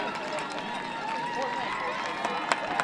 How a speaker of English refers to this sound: All right, crowd cheering both teams on.